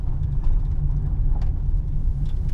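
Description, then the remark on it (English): Steady low rumble of a car moving along a road, heard from inside the vehicle, with continuous engine and tyre noise and faint rattles on top. “We're nearly to where we're going to park the car.”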